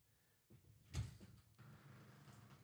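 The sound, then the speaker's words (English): A door is opened by someone checking outside for a guest: a rattle, then one solid clunk as it opens, followed by a steady rush of background noise, with no one speaking. “…'s going to have a look out the door”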